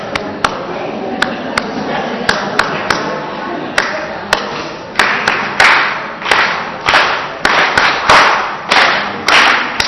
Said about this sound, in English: Can you hear me clapping?